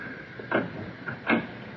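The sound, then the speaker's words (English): A door to a room being closed behind people coming inside at about 2 o'clock at night, heard as two short, dull knocks about three-quarters of a second apart, the second slightly louder, over a steady low hiss with no voices. “Now, come inside. Close the door behind you.”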